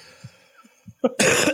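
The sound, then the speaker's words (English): A forceful, mock COVID cough bursts out near the end after a few soft low thumps and breaths, loud and harsh with a raspy, breathy spread. No one speaks. “I'm doing a COVID cough.”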